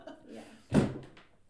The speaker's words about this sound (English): Don't worry, I've kicked those drawers like a million times.